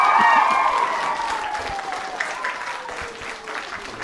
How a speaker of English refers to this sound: Come on, give me another round of applause, ladies and gentlemen.